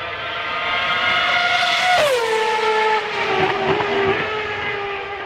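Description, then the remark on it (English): The Red Bull RB7 speed comparison car, a Formula One car with a 2013-specification Renault V8 engine driven by David Coulthard, screams past, its loud, high-revving engine whine dropping sharply in pitch as it passes, then holding a steady roar as it pulls away. “2013 specification Renault V8 engine, David Coulthard in the Red Bull RB7 speed comparison car.”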